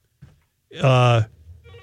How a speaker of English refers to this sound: Well, at least Reavers will know when the phone's ringing.